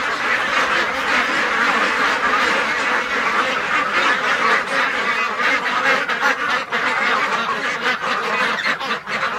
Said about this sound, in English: So in here we have this shed, we have 400 ducks.